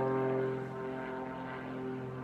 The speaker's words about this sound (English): I'm getting closer because can you hear the plane overhead? This is what I get for trying to work outside.